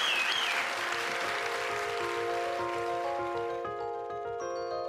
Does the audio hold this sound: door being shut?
no